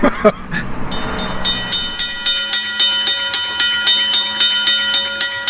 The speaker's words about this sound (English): that's the sound, Deng Deng, the train would make coming through this section of town